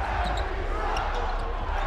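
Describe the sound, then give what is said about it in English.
An arena crowd at a Utah Jazz basketball game chants at the referees, a loud, sustained wash of many voices filling the whole moment with little variation, and no single voice standing out. “Not the most original chant I've ever heard.”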